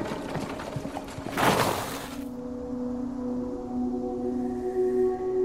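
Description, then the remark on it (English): Horse hooves clip-clop with the rattle of a drawn cart for about two seconds, then give way to a steady, eerie tonal drone with layered sustained notes. No one speaks. “and up ahead you see a cart traveling.”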